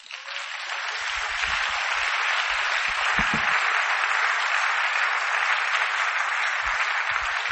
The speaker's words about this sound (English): Wow. Clap for God.